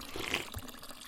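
Someone drinks fresh spring water up close, a quick slurp and gulp over the steady trickle of running water. No one speaks.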